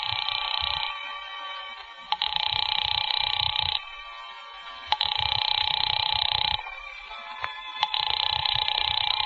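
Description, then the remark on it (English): A telephone rings on and off in a steady cadence, four long bursts separated by short pauses, loud, as a house-phone call to an apartment goes unanswered, with no voices. “There's no answer. Shall I keep ringing, sir?”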